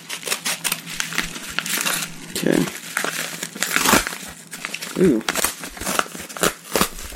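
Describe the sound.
Dense, continuous crinkling and crumpling of wrapping material as a peculiarly wrapped mailed package is opened, with sharp papery crackles and tearing bursts; a voice briefly speaks partway through.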